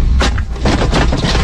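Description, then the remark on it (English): Brendan Schaub's truck flips over while off-roading in a loud, chaotic crash: heavy thuds and crunching impacts repeat roughly every few tenths of a second over a constant low rumble, with no voices. “So this is the rollover followed by the SOS.”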